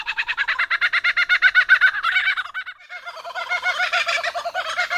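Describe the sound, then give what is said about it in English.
A superb lyrebird imitates a kookaburra's laughing call: a loud, rapid run of rhythmic cackling notes that pauses briefly, then resumes in a rougher, more chaotic chorus. “A kookaburra.”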